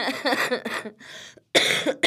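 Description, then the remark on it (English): Harsh coughing in two bursts separated by a short pause, the first a cluster of rapid hacking coughs, the second a loud, raspy fit, with no talking. “There's that coughing.”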